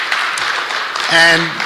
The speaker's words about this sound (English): Can we just give them a clap? Doing so amazing.